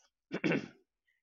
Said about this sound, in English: No, I was trying to clear my throat as well, so I think I decided to stop just because I was getting a bit croaky.